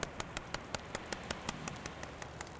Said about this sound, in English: Do you hear that clicking sound? It's Moby Dick. He's calling to his own kind out there in the ocean.